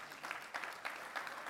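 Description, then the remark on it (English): A crowd applauds steadily as a hand clap of praise to God, many hands clapping together in a dense, sustained wash of sharp claps with no voices standing out. “So let's give God a hand clap of praise.”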